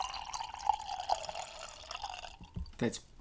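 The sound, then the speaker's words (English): Cheap wine pours in a steady stream into a cup, its pitch rising slightly as it fills, then stops with a few drips and light clinks. “The sound of cheap wine uh-huh. pouring into a cup.”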